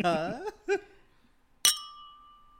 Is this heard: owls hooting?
no